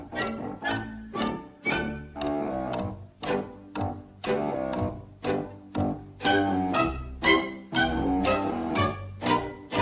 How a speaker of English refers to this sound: He'd have heard you by now, Captain, if he hadn't swallowed that alarm clock. But now when he's about, he warns you, as you might say, with his tick-tock, tick-tock, tick-tock.